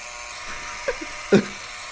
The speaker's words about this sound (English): Why did you open it? There was a weird buzzing noise. Yeah, that means open the door.